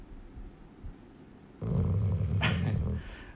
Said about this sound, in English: That's him snoring.